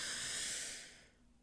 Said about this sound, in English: So we're going to breathe in through the nose.